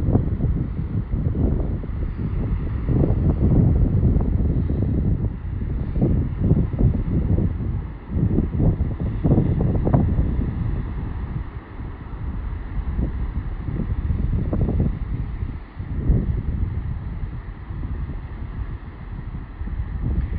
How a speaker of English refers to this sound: And just enjoy the sound of the wind, the sound of the water crashing up against the rocks. Just take a moment, close your eyes, and just be here with us.